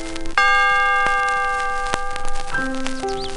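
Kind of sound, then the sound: signal or alarm, read-along book page-turn chime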